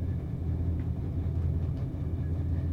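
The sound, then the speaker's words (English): A steady, deep rumble of a train rolling along the rails in Italy, recorded with the microphone by the window inside a train compartment, continuous and fairly even in loudness with no voices. “I love that sound of a train, that chugga-chugga sound.”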